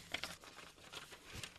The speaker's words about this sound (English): Can I pull out a piece of paper? Yeah, sure.